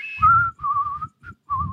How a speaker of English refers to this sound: can you whistle? Yeah.